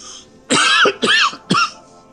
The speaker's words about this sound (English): Cough. Cough. Cough.